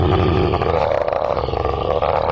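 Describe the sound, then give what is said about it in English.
A person lets out a long, loud, growling roar, imitating a wild animal. It is rough and throaty, held for a couple of seconds with no other talking. “Can I use a free action to roar in its face?”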